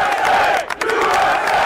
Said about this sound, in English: And there was a tremendous cheer. There was a chant of USA, USA. It was an electric moment, just stunning.